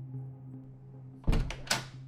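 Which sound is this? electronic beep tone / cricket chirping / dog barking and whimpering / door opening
door opening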